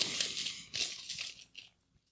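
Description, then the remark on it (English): A second pack of Hunger Games trading cards is torn open with crinkly, crackling foil bursts, three or four ripping pulls over about two seconds before it falls quiet. No one speaks. “Okay, pack number two.”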